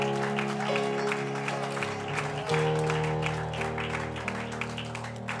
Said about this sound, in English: If you believe it, just say amen with your hand clap.